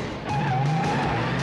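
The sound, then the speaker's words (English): A company car takes off with a loud engine roar and a sustained squeal of tires as it pulls away, filling the short moment with no voices. “And driving the company car.”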